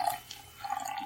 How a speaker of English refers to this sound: I'm not peeing into anything, guys. I'm pouring another Guinness.